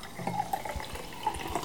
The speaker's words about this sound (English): Pouring yeah, fizzy water yeah